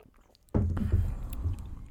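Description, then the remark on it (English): After a short quiet moment, someone takes loud gulping sips of a coffee beer, a run of wet swallows in quick succession with no talking. “I bet we got those gulps on audio like just now.”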